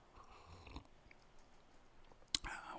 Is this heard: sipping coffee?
yes